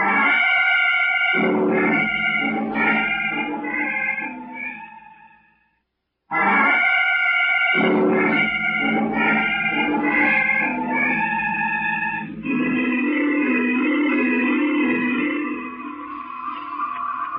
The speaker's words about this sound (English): Listen to them. There must be billions of bugs out there. Crickets, bees, flies, hornets, wasps, ants, every kind of insect there is.